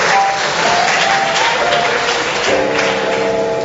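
Children clap and cheer together for a child volunteer in a steady burst of applause lasting a few seconds, loud and dense throughout, with some high excited voices mixed into the clapping.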